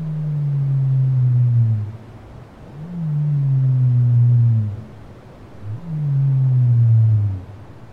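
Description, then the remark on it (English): Three long, low descending moans from a sped-up blue whale, each lasting about two seconds with a faint higher harmonic, evenly spaced over a soft underwater hiss. “Let's hear a little bit of what blue whales sound like. And just a note, this audio has been sped up so our human ears can hear it.”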